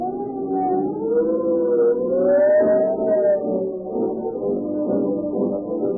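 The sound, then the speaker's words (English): A police car siren wails continuously for several seconds, its pitch gliding slowly up and then easing back down, loud with a low rumble beneath and no voices. “Every police car that speeds past you, the siren shrieking, is a dramatic advertisement for Rio Grande Cat Gasoline.”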